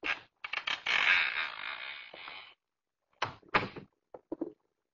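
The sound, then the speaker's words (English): A partially open door creaks slowly further open in a long, drawn-out groan lasting a couple of seconds, followed by a few short, sharp clunks and taps. No one speaks. “That door is already partially open.”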